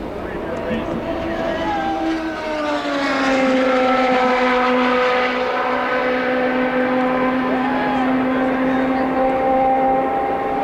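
High-revving Indy race car engines at the 1993 Indy 500 whine loudly and continuously, their pitch dipping as cars sweep past, one droning pass blending into the next.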